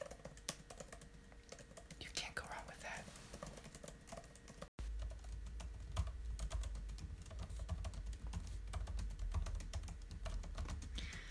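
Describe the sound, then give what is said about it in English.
Steady, fast typing on a standard Apple keyboard, a dense run of light keystroke clicks that continues throughout, with a voice briefly speaking over it and a low hum underneath. “This is the standard Apple keyboard.”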